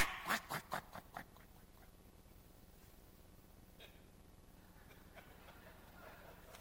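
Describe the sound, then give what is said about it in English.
A person calls ducks by imitating them, giving a quick run of about six loud, nasal quacks at the start, followed by quiet background hiss with a few faint sounds. “He didn't know I could call ducks.”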